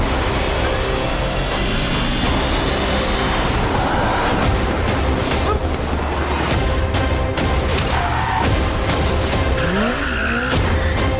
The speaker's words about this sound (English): I heard a screeching tyre there and an awful lot of loud music. It must be Mission Impossible.